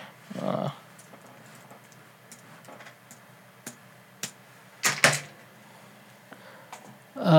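Scattered computer keyboard key presses click sparsely and irregularly as someone looks something up, a handful of sharp taps with a brief cluster near the middle, bracketed by short bits of voice at the start and end.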